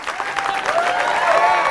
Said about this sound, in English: Let's hear it for Steph. There'd be no books without her. That's not a good enough clap.